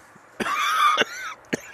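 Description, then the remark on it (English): A stifled cough after smoking a strong cigar: a sharp burst, then a strained, wheezy held breath, another choked burst, and a final short cough, all muffled as if held back. No one speaks. “Oh, it was all I could do not to cough.”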